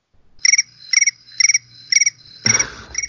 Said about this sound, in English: Oh, crickets.